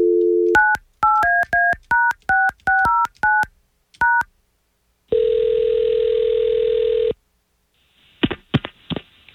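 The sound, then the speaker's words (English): Radio hosts phone a woman: a brief dial tone, then a quick run of about a dozen telephone keypad beeps, followed by one long steady ringback tone and a few clicks as the line picks up. No one speaks. “We're going to try to call her right now.”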